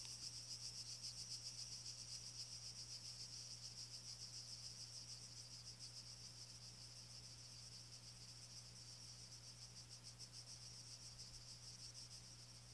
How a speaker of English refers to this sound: The cicadas abruptly stop their whirring, and the atmosphere becomes completely calm.